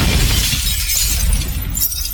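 A loud crash of glass breaking as a thrown rock hits a truck and knocks its mirror off, with a dense, crackling shatter that keeps going for about two seconds before easing slightly near the end. No one speaks.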